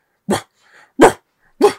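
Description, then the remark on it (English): A person imitates a dog, the way Millie Bobby Brown barks to hype herself up, with three loud, sharp barks spaced about evenly and a faint whimpering sound between the first two. “So, I guess something that she does to really hype herself up is bark like a dog.”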